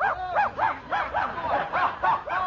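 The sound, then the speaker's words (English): A small dog barks and yips rapidly, about eight sharp, high-pitched yaps in quick succession, fairly loud, with no talking. “Why don't you go and play with the dog?”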